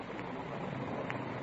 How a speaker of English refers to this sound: Rain's starting in. Windy.